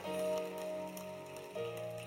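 An audience claps together in a dense, steady patter over sustained musical tones, the clapping fairly loud and continuous with a brief dip and swell partway through.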